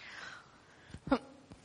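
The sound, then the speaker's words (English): A few short, harsh coughs, the loudest in the middle and a final sharp one at the end, preceded by a quiet stretch with a faint background tone. “So sorry, I've got a bit of a cough.”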